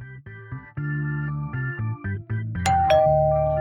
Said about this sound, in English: That was really weird, ringing a doorbell for our own studio.